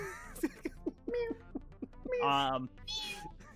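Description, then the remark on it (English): A person's voice imitates a cat meowing: a run of short, clipped vocal yelps followed by two longer, drawn-out, wavering meows. “And I'm roaring like a roar, meow, roar, roar. Yeah, they meow.”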